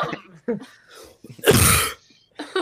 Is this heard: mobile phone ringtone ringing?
no